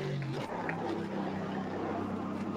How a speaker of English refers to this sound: Great sound, that Mercedes rumble, isn't it?